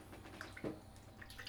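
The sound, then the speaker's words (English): A quiet sip of water: soft wet mouth clicks, then one brief gulping swallow, followed by a few faint moist smacks. No one talks. “I'll take a drink of water here.”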